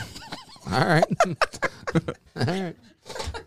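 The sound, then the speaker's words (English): A person makes clucking, warbling vocal sounds imitating a chicken, several rising and falling squawks in quick bursts, fairly loud, with laughter-like breaths between. “Don't even get the chicken thing going.”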